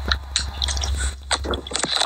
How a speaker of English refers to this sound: take your bag of whatever you're eating away from the phone.